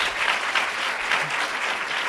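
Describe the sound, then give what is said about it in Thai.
At an event organized by Dreamscape, a crowd applauds the Dreamscape leader steadily for a couple of seconds, a dense, even wash of many hands clapping at moderate loudness with no voices over it. “ต้องขอขอบคุณทีมงาน Dreamscape นะครับที่จัดงานนี้ขึ้นมานะครับเพราะว่าทั้งเรื่องไฮบริดเรื่องอะไรด้วยนะครับก็แก้ไขสถานการณ์กันอย่างเยี่ยมยอดเลยนะครับเอาตบมือให้กับผู้นำDreamscape หน่อยนะฮะ”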